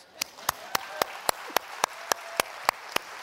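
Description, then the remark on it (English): Audience applause for military people, first responders and medical personnel, in a steady, even rhythm: about a dozen sharp, loud claps land in unison at a brisk regular pace over a soft wash of crowd noise, with no one speaking. “And I came to greet and have you applause all the military people, the first responders, the medical personnel.”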